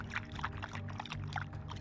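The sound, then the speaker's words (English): Water is poured steadily into a container for Rex the dog, a continuous splashing gurgle with bubbly bursts, carried over a low, constant background hum for just under two seconds. “So Mike made a point to give Rex frequent water breaks.”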